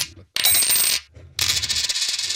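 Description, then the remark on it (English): Bright metallic jingling of coins spilling and clattering, in two bursts separated by a short pause, loud with a shimmering, rattling texture and no voices. “It's gonna, you're going to get more coins out of it.”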